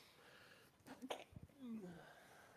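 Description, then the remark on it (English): One abrupt sneeze bursts out midway, preceded by a quick sharp inhale and followed by low murmured voice sounds against a faint background hiss. “That wasn't a sneeze.”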